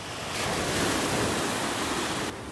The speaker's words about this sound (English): apologies for the sea noises, but this is the analyst with a difference, because I'm in Greece